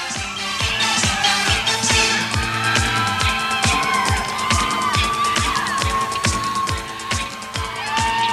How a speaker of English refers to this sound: This is from a cheer routine from the 80s, something that we found in your article. So just listen to it right now, and then we'll play kind of something more contemporary.